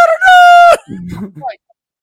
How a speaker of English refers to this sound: I said, can you not hear the cluck? I mean, literally, there's all these chickens in the background. Cluck, cluck, cluck, cluck, cluck, cluck, cluck, cluck, cluck, cluck, cluck, cluck, cluck. And every once in a while, there's a rooster going, cluck.